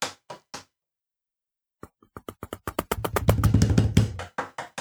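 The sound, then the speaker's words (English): Hands slap a desk to imitate running in a hallway scene: three quick smacks, a pause, then a rapid, accelerating patter that swells into a loud, dense drumming like running footsteps before easing off. No one speaks. “Dude, just slapping on the desk.”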